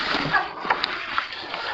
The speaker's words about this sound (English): I better take a drink of water before I go into that one.